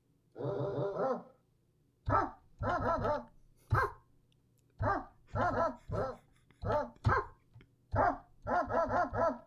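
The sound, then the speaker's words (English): Someone imitates a dog barking with a rapid string of short, loud yips, some single and others in quick pairs and triplets, ending in a burst of four. “I can do it as a dog barking too.”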